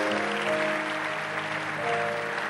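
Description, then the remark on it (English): A steady round of applause from a crowd for the actors and executive producers, dense clapping that fills the whole clip at an even loudness, with a faint sustained musical tone underneath. “Can we give another round of applause to the actors and the executive producers?”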